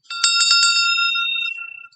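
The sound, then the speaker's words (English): A small hand bell, rung to end a class, rings in a quick burst of about six rapid strikes, its bright metallic tone lingering and fading over a second or so, fairly loud with no talking. “We finally got a bell.”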